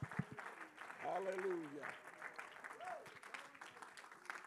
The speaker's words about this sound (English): In Jesus' name, shall we clap our hands unto the Lord and give him praise.